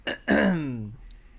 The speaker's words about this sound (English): Yeah, clear your throat.